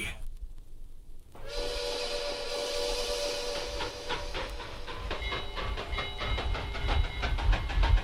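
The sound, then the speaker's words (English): A steam train rumbles, a long sustained whistle sounding over hissing and a steady clickety-clack of wheels on the rails that grows slightly louder toward the end. “This train is a Scar Train.”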